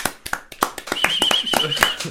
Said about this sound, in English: You know what? We'll give him a round of applause.